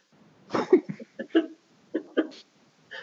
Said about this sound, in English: I've got pretty bad allergies right now. Oh my gosh, you got the COVID, don't you? I'm trying to sneeze.